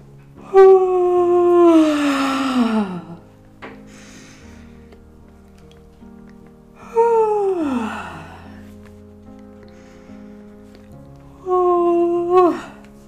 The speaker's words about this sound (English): Yawning in three steps. Yawn three or four times, making the ah sound on the exhale.